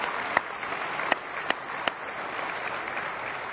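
A church audience applauds for God, a dense, steady wash of many hands clapping that holds for the whole stretch, with a few sharper individual claps popping out early on. No one speaks over it.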